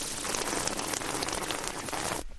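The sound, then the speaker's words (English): A long, continuous sip of a drink: a steady, airy slurping hiss with a fine crackle, lasting about two seconds before cutting off abruptly. No one speaks. “Okay, that was a long sip.”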